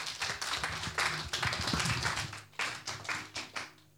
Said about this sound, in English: Clap your hands together for you.